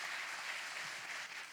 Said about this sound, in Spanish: Dale un fuerte aplauso al Señor. Give God a great round of applause.